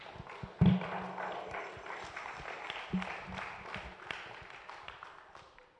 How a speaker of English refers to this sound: Can you give a big clap offering to the Lord?